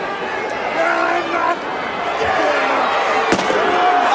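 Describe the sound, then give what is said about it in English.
During a wrestling match, a single sharp, loud slam as a wrestler's head and neck are run into a chair cuts through a steady roar of crowd noise and shouting voices near the end. “Oh, and he ran the neck and the head of that chair.”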